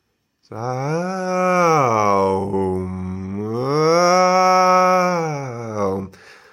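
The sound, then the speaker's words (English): A single voice chants a long, sustained "aum" tone, its pitch sliding up and down in two slow siren-like swoops before ending abruptly. No other sounds accompany it. “Doesn't sound too lovely, but I was trying to show that, like that siren, siren-y sound.”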